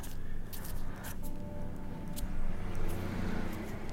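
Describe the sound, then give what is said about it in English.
Steady traffic rumble with a broad rushing roar from passing cars, swelling slightly as vehicles go by, with no one speaking. “The cars are going past. Whizzing past, of course.”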